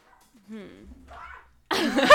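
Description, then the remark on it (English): A dog gives a few short whining yelps, then lets out a louder, rough bark as voices murmur. “Can someone go and get the dog?”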